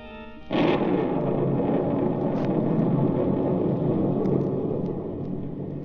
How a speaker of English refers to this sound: Oh, what a thunderstorm.